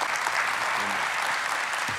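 A steady burst of audience applause for a helper, many hands clapping in a dense, even wash of noise for the full two seconds, with a brief low murmur of voices underneath.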